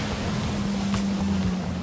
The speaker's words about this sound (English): takes me for a spin on the jet ski to check out the conditions up close.